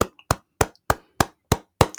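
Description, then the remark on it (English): Seven sharp hand claps in a steady, even rhythm, each a crisp, bright smack about a third of a second apart, with no voices or other sounds between them; hand claps for American football player J.J. Watt. “Hand claps for J.J. Watt.”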